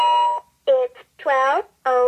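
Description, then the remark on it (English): A short electronic beep tone, then a clipped synthetic voice speaking in three brief bursts, clear, as a flying-saucer-shaped talking clock announces the time, 12:09 a.m., after its top button is pressed. “It has a button on the top that you press to announce the time”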